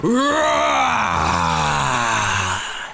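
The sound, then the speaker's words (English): A person voices a long, loud monster roar for Gary, a story character at the edge of a swimming pool: a rough growling bellow that slides downward in pitch and holds for about three seconds before tapering off. “Gary let up the most almighty roar, did a triple somersault into the pool and caused a huge splash.”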